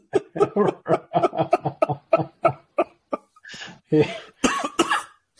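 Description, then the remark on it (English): Loud coughing in several harsh bursts, preceded by a rapid run of breathy, rhythmic laughter that breaks into the coughs near the end. No speech. “I didn't mean to cough, but oh my gosh.”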